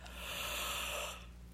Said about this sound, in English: But I will say that today, before it was the end of the day and I started feeling really fatigued again, oh my gosh, I think I'm going to yawn.